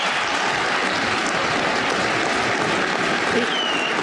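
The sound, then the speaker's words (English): A crowd at a political speech about making voting easier claps steadily for about four seconds, a dense, loud wash of many hands with no break, and a few faint voices or cheers mixed in underneath. “I should get some applause on that, too.”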